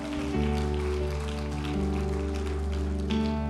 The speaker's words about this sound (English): Come on, let's give Jesus a hand clap of praise today. He wants to multiply us.